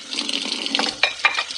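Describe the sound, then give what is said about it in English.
Running water splashes steadily from a tap as someone washes their hands, with a few brief louder sloshes as hands move through the stream. No one speaks. “I was just washing my hands because I was having some lunch.”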